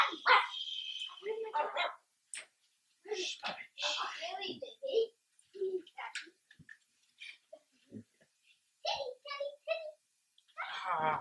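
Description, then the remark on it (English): A small dog yaps in a quick series of sharp, high-pitched barks, with short pauses between bursts and voices faintly mixed in. “Well, you clearly two dogs and a small dog as a warning alarm.”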